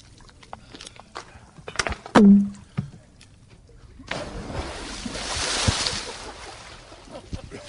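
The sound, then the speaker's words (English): A man jumps into a swimming pool: a few sharp knocks and a brief squeak, then a sudden loud splash that becomes a steady churning hiss of disturbed water. “He took a dip in the pool.”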